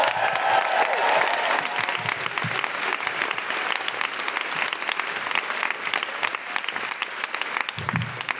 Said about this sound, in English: If you would, please, a round of applause. Welcome to the stage, your wonderful Deborah Francis White!